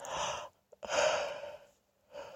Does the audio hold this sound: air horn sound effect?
no